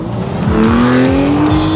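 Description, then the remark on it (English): A car is put in gear and peels out down a main road, its loud engine revving up through several quick gear shifts, tires squealing steadily underneath as it accelerates away. No one speaks. “you put the car in gear and start peeling out down this main road, and you see the Swamp Cabbage Bionic Man continuing to run full speed, but unable, even with his bionic parts, unable to keep up with a full speeding motor vehicle.”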